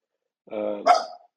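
A dog lets out a short growly bark followed by a sharper yelp-like bark, two quick vocalizations with silence before and after.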